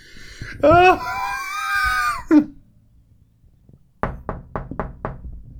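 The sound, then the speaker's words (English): A loud, drawn-out wailing cry, then a pause and five sharp, evenly spaced knocks on a door, crisp, coming in quick succession. “There's somebody at the door.”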